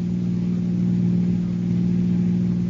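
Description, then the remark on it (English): A car engine drones steadily as the car drives across the border, a loud, continuous low hum with no speech and no change in pace. “And as the car crossed the border, the police started to close in.”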